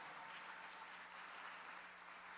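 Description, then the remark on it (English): A church crowd claps hands together as a hand clap of praise to the Lord, a steady, dense, continuous bright patter of many overlapping claps that holds at an even level throughout with no voices. “Could we give the Lord a hand clap of praise?”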